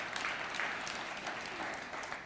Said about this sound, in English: Heaven's spacious. How exciting. Well, thirdly, you can clap for that. Amen. Awesome.